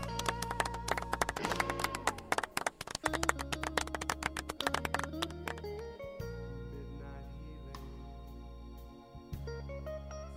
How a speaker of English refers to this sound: You are amazing. You're gonna get some claps for that.